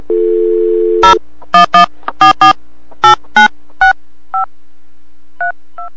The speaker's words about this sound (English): You guys don't need to hear all that dialing. Okay. Let's get this ringing.